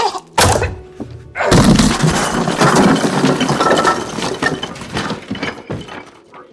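A sharp thump, then a loud splintering crash as a flimsy wall gives way, followed by several seconds of clattering, crackling debris that slowly trails off. No one speaks.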